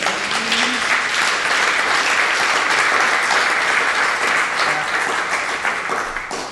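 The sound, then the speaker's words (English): A crowd breaks into sustained applause for serving over 250,000 meals to first responders and the community over 7 months, a dense, steady wash of clapping that holds loud for several seconds before beginning to taper off at the end. No one speaks over it. “I mean, I feel like that needs applause.”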